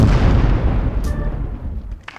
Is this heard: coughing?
no